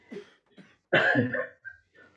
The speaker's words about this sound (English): Yeah, that was a cough of recognition of your truth,